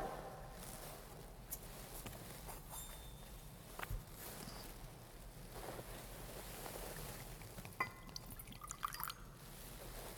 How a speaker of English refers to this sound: By the mingling of this water and wine, become partakers of his divinity, became partaker of our humanity.